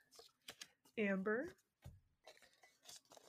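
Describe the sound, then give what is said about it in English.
Items are shuffled and rattled around in a container, a run of light clattering rustles, with a brief voiced sound from a person partway through. “Put it back in there, shuffle this up.”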